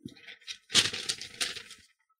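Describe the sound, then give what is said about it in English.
Paper being rattled and crumpled in a quick burst of dry, crackling rustles, starting softly, then louder and busier for about a second before stopping. No voices. “As I rattle the paper”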